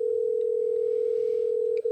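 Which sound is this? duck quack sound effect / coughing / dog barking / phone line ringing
phone line ringing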